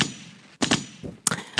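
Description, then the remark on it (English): A quick series of loud gunshots, four or five sharp cracks in an uneven rhythm with short gaps between them, each with a brief rumbling tail. No one speaks. “Shots fired.”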